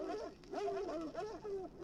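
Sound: dogs barking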